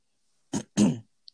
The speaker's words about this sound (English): Sorry, I had to clear my throat for this. It's making it all dramatic.